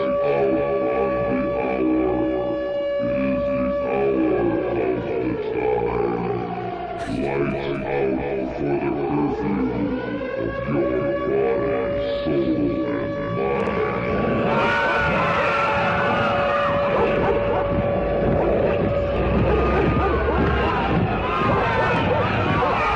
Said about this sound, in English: The air raid siren.